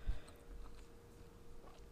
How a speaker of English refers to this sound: It's not giving ASMR. Oh, I'm so sorry. Well, it's giving person next to me chewing.